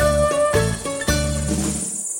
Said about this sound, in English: So, with the constant hum of cicadas in the background,